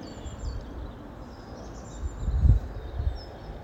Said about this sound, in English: But I can hear hundreds of little dicky birds.